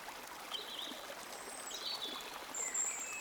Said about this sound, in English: And when tired at last, he sat on the bank, while the river still chattered on to him, a babbling procession of the best stories in the world, sent from the heart of the earth to be told at last to the insatiable sea.